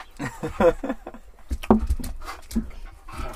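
A dog whimpers in a string of short, breathy bursts mixed with quick panting, moderately loud and uneven over a few seconds, with no one speaking.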